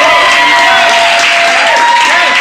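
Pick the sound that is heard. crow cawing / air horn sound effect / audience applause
audience applause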